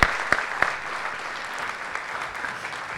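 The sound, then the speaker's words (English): A church audience breaks into a round of applause welcoming three families at a family dedication: several sharp claps up front, then steady, moderately loud clapping from many hands continuing throughout, with no voices. “So let's give them just a round of applause and just welcoming them.”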